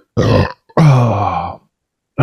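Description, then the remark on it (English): A short grunt-like sound followed by a longer, deep, drawn-out burp, loud, with a brief pause between them and no talking. “Anyone with misophonia, I did just burp, so fuck.”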